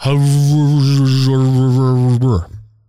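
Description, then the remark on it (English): A voice mimics garbled phone audio with a loud, steady, buzzy drone at a fixed low pitch, held for about two seconds before it drops away abruptly. “No, just we want to hear what you're saying, and it sounds like this.”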